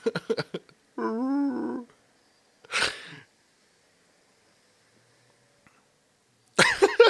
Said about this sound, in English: Mala and Chewie are just growling at each other. Or I guess Wookiee talking.